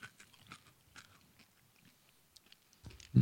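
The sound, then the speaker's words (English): Crunchy chewing of an M&M-like candy by a man guessing its flavor, with irregular bursts of cracking and munching, ending in a louder thud-like bump against the microphone. No one speaks. “look of consternation as he chews and crunches.”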